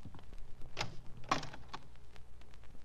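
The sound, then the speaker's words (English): A closet door with a mirror on it is opened: a sharp latch click, then a louder clunk as it swings free, followed by a softer knock, against a quiet background. “There's a mirror on the door of that closet to your right. Open it and see how you've improved.”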